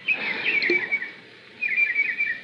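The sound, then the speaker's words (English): Small birds playing in a fish pond twitter and chirp busily in two lively bursts separated by a brief lull, the high calls clear with no one talking. “Oh, birds playing in the fish pond. Look at them, happy birds.”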